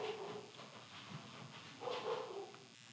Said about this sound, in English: Okay, I'm sorry. I try to take every precaution to keep my dog, muffled, but she goes ballistic when someone knocks on the door, the mailman just came.